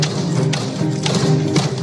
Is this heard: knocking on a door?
yes